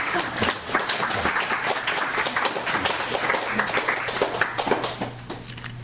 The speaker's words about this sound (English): Clap? I don't think we've ever had clapping. It's really good.